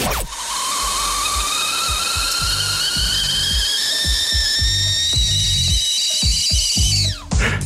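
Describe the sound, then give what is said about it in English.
A kettle whistles shrilly and steadily at a high pitch for several seconds, with hissing steam and faint clattering beneath, then the whistle drops away abruptly near the end. “You can't tell me you haven't noticed the high-pitched, piercing whistle of the kettle you guys play on your show between segments.”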